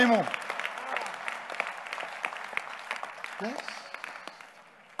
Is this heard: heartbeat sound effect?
no